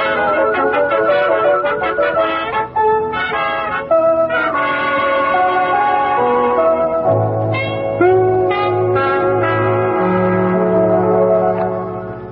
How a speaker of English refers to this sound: I'll do the ringing and you do the running. Okay, let's ring Mr. Edwards' bell first.